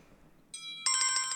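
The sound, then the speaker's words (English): The Lime Tree team's bell buzzer in a quiz sounds alone: a steady, bright, high electronic tone that quickly breaks into a rapid, rhythmic trill of repeated ringing pulses, fairly loud, with no talking. “So the Lime Tree buzzer this week is the bell.”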